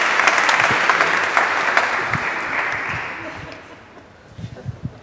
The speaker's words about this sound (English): Round of applause for our lambs slash wolves actors who are doing a good job.